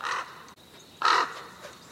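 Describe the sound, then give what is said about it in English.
A crow gives two harsh, raspy caws about a second apart, fairly loud, with a faint hiss of background between them and no one speaking. “Apparently in Russia, it's believed that witches can take the form of a crow.”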